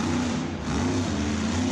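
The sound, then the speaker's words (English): A big, loud monster truck engine revs with a deep, rumbling growl, its pitch rising and falling slightly in a steady roar over a short stretch, with no voices. “The monster trucks are coming.”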